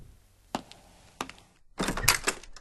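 household object, knocking on a door

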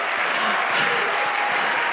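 crowd, audience clapping

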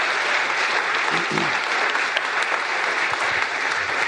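crowd, audience round of applause

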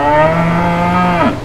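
animal, cow mooing

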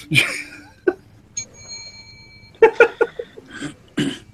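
signal or alarm, bell ringing

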